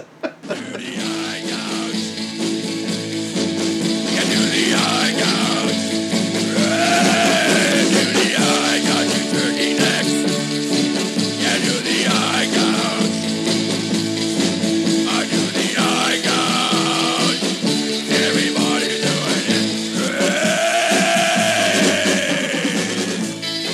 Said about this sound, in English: Oh my God. Cats are fighting in the hallway. I'm the cat fighter.